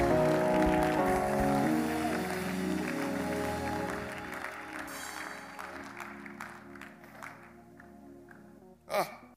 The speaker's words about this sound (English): Come on, somebody, clap your hands and praise the name of Jesus.